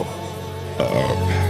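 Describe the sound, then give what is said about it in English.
A low, rumbling burp lasting over a second, with a guttural shift partway through and no talking around it. “I got a burp.”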